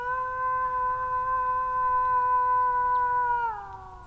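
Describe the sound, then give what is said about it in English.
A person imitates a wolf with one long, sustained howl to draw a wolf out of the forest in Germany, holding a steady, clear pitch for several seconds before it sags and fades at the end. No other sounds accompany it. “That's someone trying to draw one out of the forest. Wolf could appear any moment to reply or just check out where that howl is coming from.”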